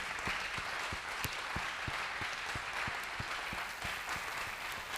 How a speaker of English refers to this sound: Let's put our hands together. Give the Lord a very big clap of.